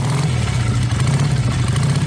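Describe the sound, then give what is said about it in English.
A motorbike engine runs with a loud, steady low drone and slight throttle wobble for about two seconds, with no voices. “eat Kentucky Fried Chicken, and ride motorbikes”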